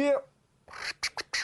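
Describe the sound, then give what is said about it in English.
A voice imitates a record scratch: a short hummed tone, a brief pause, then about four raspy, hissing bursts in quick succession, fairly loud. “Vocal scratch.”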